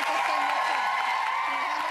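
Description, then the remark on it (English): A studio audience, urged on by a comedian, claps and cheers in a steady, dense wash of noise that holds at an even loudness, with a murmur of voices running through it. “See, they have the comedian, like, getting everyone to clap and have fun.”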